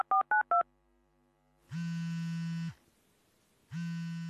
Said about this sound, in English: When you dial up your buddy on a mobile phone, a signal is being sent from the transmitter in your phone to a cell phone mast, and from here it travels to the receiver on your friend's phone, facilitating communication.